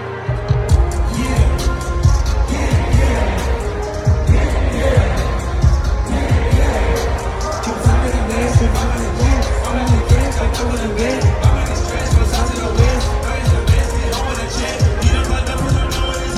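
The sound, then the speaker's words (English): A dense, roaring concert crowd fills the whole stretch at a steady loud level, a wash of overlapping voices and cheers with a low, throbbing rumble underneath and no pauses. “Look at this crowd.”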